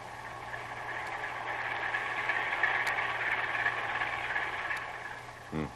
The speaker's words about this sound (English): Well, Herr Lieutenant, what have you found? It must be the one, Herr Captain. Heavy engines and 2 propellers. Let me listen.